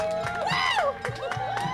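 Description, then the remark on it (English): Wedding guests cheer, with high whoops rising and falling in pitch over a steady crowd roar, followed by scattered shorter shouts and cheers. “I just did the math, and those cheers were delayed cheers for us. They were cheering for the thing that she had said 5 minutes ago.”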